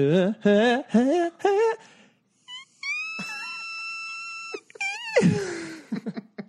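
A few short, wavering sung notes climb upward, then a single very high, thin vocal whistle tone is held steadily for about two seconds before collapsing into a breathy downward slide.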